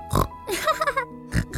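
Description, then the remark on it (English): A human voice imitates a pig oinking: one short grunt, a longer wavering squeal-like stretch, then two quick grunts close together, all loud. “Oink.”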